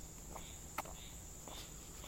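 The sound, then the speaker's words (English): A steady, high-pitched drone of summer insects chirping in South Carolina, faint but continuous, with a few brief softer calls and a single click breaking through; no voices. “I call that the soundtrack of summer.”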